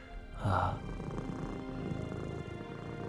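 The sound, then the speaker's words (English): A human voice imitates a cat's purr, starting with a louder rumbling burst and then settling into a steady, low, vibrating drone that continues alone for a few seconds. “Just resonant purring.”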